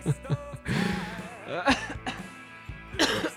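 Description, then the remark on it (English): A man in a coughing fit while recording without a cough button: several harsh, raspy coughs in irregular bursts, with strained, throaty breaths and vocal noises between them. “So you just have to listen to me cough inside your head as you're driving, as you're working out, as you're sitting down, doing nothing”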